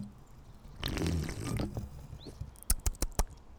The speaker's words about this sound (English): Goddamn slurp. You love the slurp.